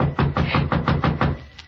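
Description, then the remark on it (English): Rapid, evenly spaced knocking on a door, about eight or nine raps in quick succession, fairly loud, fading slightly at the end, with no talking. “Someone at the door.”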